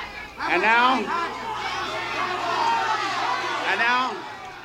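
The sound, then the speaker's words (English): A noisy, excited concert crowd roars steadily in pandemonium stirred up by a tenor saxophonist's playing, many voices shouting and chattering over one another in a dense, loud wall of sound that swells and dips slightly throughout. “You could hear the, as George Wen referred to it, pandemonium.”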